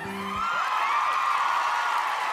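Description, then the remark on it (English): A studio crowd cheers and roars steadily as a guest is welcomed onto the show, a dense wash of applause-like noise with high whoops and yells rising out of it, holding at full strength for a couple of seconds. “the crowd loves you.”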